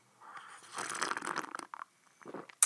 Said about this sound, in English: Time for a sip of cuppa. Hold on.